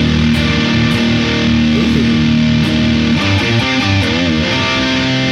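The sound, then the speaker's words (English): Loud, heavily distorted electric guitar through a Marshall amp with its boost engaged and a Golden Apple pedal, ringing sustained chords before shifting into quicker picked notes, with steady background hiss and no voices. “So let's keep the Marshall with the boost engaged. There you go, Marshall on its own. Now let's add the golden apple.”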